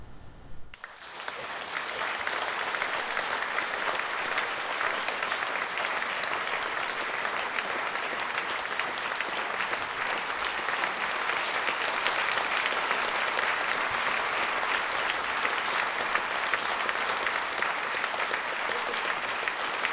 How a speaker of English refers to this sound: Thank you for coming. Just leaves me to say one more round of applause for … and Carol Ann Duffy.